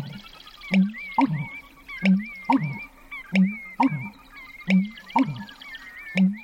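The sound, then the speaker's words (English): A marsh bird's deep, gulping pumping call, recorded in a marsh at daybreak, repeats about four times in steady three-part phrases, low and resonant, while thinner songs of other birds trill faintly in the background. “And when it started getting light, he really started pumping, and I got this fabulous recording.”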